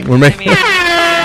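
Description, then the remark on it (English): A brief voice sound is cut off by a loud, steady air horn blast that holds one blaring tone for about a second, dominant. “I was also super pumped when I came in the room and there was the air horn played at some point.”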